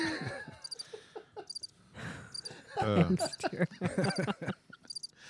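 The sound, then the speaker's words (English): Crickets chirp at night in short, high-pitched pulsed bursts that recur every second or so, fairly faint beneath louder murmuring voices and other low sounds. “It's a really long little those loop crickets there. Are going now.”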